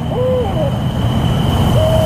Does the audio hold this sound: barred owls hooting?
yes